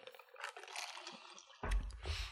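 A wet, airy slurp of someone sipping coffee, with soft liquid squishing sounds, followed by a louder, low gulp-like thud near the end. No talking.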